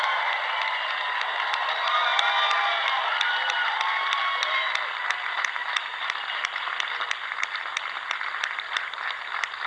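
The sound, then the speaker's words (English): A large crowd at an evening rally cheers and shouts continuously, a dense roar of many voices with whoops and yells on top, steady and loud throughout with a faint repeating ticking underneath. “There's probably another person who maybe is listening to your cheers here tonight also.”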